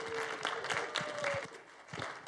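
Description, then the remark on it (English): A church crowd claps steadily together to welcome first-time visitors, a dense, continuous patter of many hands at moderate loudness, with a faint tonal whistle or feedback line running briefly underneath. “we don't want to just clap for you”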